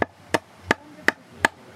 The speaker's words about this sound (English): Now it's your turn, young man, to hammer.